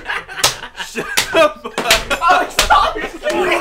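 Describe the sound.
Several sharp, loud slaps, like hands smacking against legs, land in a loose irregular rhythm while voices talk and laugh around them nearby.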